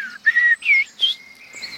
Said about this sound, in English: There you go. The great tit's just waking up in the distance with its teacher, teacher, teacher.